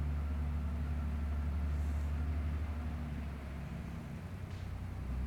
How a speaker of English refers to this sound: Even the limitation of this truck making noise in the background, the silence within me is still there, regardless of whether this truck is making noise or not.